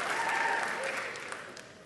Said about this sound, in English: How's she walking? They're clapping already.